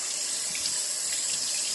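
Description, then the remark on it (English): A toilet flushing cigarettes away, heard as a short, steady rush of water with a bright hissing quality, moderately loud, with no voices. “So I flushed the cigarettes down the toilet.”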